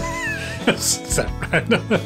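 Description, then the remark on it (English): A person imitates a cat's meow, followed by a quick spoken count of "1, 2, 3" over a faint musical background, clear. “Meow, 1, 2, 3.”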